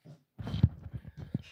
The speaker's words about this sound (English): Whoa. Somebody's knocking on something. There goes the dogs.